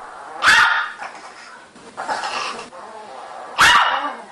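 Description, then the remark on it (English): Two sharp, loud barks a few seconds apart from a scared female dog, with quieter agitated noise between them; the barking sounds angry. “Oh, I'm going to bark at it.”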